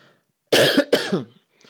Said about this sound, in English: And also, when I get dry, like I'm getting dry now, I also get a little cough.